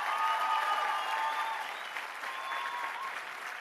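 An audience claps in a steady, dense round of applause that holds fairly loud for a few seconds, then eases slightly while continuing, with a faint murmur of voices underneath.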